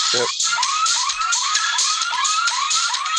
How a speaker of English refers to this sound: There's sirens. Yeah. So I set enough alarm, and this is really one of the really really cool new things that you can do in the game is you can actually send out an SOS anytime you're in the dungeon.